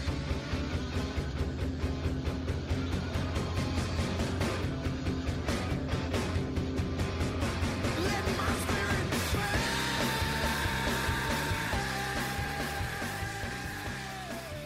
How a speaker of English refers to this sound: Peter, play when he screams, the build up, and then when he screams, let my spirit pass.